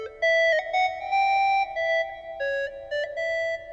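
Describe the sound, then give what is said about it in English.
A phone ocarina app, played by someone in Southern California blowing into their phone, plays a simple melody of pure, hollow flute-like tones, about nine sustained notes of uneven length that rise and fall in a mid-high register, with no talking. “And in the same app, you can listen to other people blowing to their phones from around the world.”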